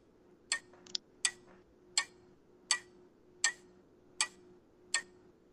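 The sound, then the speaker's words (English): A clock ticks steadily, roughly one sharp click every three-quarters of a second, crisp, with a faint low hum running underneath and no voices. “Nope, it's a clock.”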